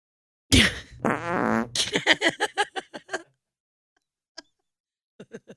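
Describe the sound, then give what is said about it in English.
A loud fart sound effect, an old recording from a catalog of fart sounds: a harsh blast stretches into a buzzing drone, breaks into a rapid string of sputtering pops, then after a pause a few small toots trail off. “Whose fart was that? It was an old one on there.”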